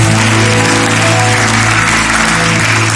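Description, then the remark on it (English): A seated church audience claps their hands to the Lord steadily for three seconds, a loud, dense wash of many hands over a low sustained musical tone, with no voices standing out. “Why don't you clap your hands to the Lord as you're seated?”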